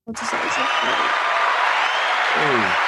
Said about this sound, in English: Oh, can I get a little applause?